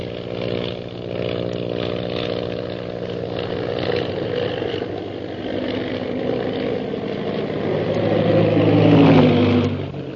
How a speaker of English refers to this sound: Suddenly, Shanghai Lil's plane rocks crazily and goes into a spin, dropping swiftly toward the ocean below.